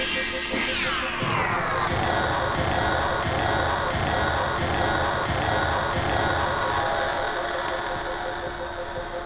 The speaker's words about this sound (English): And that is what a 909 crash cymbal sounds like. Slowed way down.